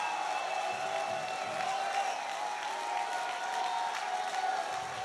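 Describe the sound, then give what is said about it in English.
An audience at a church service claps and cheers continuously for several seconds, giving God a shout, a dense, steady wash of applause with scattered shouts mixed in, fairly loud and without any clear speech. “If you believe that, take 30 seconds, clap your hands, and give God a mighty, mighty shout.”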